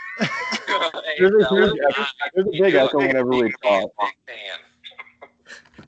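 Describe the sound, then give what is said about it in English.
Several voices talk and call out, their words smeared by a noticeable echo that lingers after each phrase before trailing off into quieter murmurs. “We're not going to talk because there's too much of an echo.”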